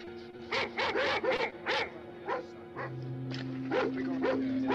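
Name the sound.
dogs barking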